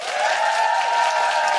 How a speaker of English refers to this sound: A bigger applause for Shaparak Khorsandi.